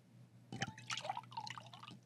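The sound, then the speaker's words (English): De-alcoholized CBD wine from Crybaby Wine of Fresno, California, is poured into a glass, a short burst of gurgling, splashing liquid lasting under two seconds, with the pitch shifting as the glass fills. No one speaks. “Hold on, let me pour myself a glass.”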